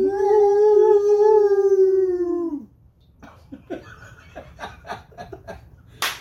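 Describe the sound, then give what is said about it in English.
A person lets out a long, loud, steady howl imitating a dog, trailing off with a drop in pitch, followed by scattered snickers and laughter. “It's like your voice is like a dog whistle. It's like, it just, yeah, drives everybody else crazy, and the dogs are all.”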